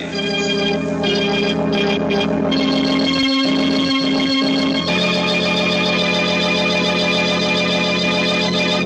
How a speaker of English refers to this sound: And somewhere in the distance, a clock in a church steeple starts chiming for... Murder at midnight.